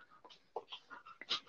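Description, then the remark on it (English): A small female Australian Shepherd cattle dog mix pants softly in quick, uneven breathy bursts, several rapid huffs over a second or two, quiet, with no talking. “Now you could probably hear her panting, but that's my little Australian Shepherd cattle dog mix.”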